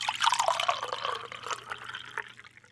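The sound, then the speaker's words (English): Homemade sweet tea pours steadily from a jar into two mugs, a gurgling stream with a rising fill tone that tapers off near the end. No one speaks. “Aaron Rowe opens a jar of homemade sweet tea, which she pours out into two mugs to share.”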